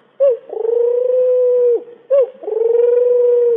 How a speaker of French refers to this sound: La tourterelle.